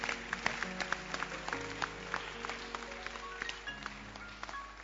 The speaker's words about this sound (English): You can clap your hands.